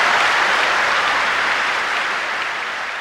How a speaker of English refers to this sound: To have this room of people cheer like that for an airport, there is something else going on here. Because for the people in the audience, this wasn't about some big construction project.